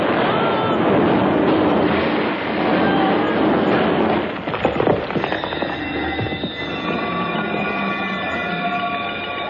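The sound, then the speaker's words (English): A demolition blast, set off by a minister pressing a plunger, erupts midway through a steady roaring din, a quick cluster of sharp cracks and thuds, then settles into a sustained rumble with a faint ringing tone. “the minister presses the plunger.”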